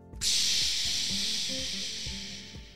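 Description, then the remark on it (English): A waterfall on an island crashes down from the top of a hill into a small river in a loud, steady rushing roar that starts abruptly and holds constant, with low rumbling thumps churning underneath the bright hiss. “I love the sound of water crashing.”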